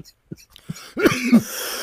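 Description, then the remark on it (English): A few light, short coughs after a bong hit give way to two harsher, raspy hacking coughs, fairly loud, with no talking. “Everybody's coughing.”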